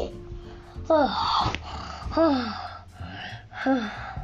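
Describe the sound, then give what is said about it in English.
Dogs scuffle as one chases the other, letting out several loud bursts of growling mixed with sharp, sliding yelps and whines, with brief noisy pauses between the outbursts. “Whoa, my minion is chasing the dog.”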